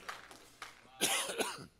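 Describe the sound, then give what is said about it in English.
A person coughs several times in quick succession, starting with a couple of lighter hacks and ending in a louder, harsher burst. No one is talking. “After all I've been through, forgive my cough, y'all, I'm very sorry.”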